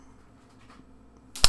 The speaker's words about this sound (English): I don't know what's worse, the slap or, like, the anticipation of the slap. Definitely the anticipation.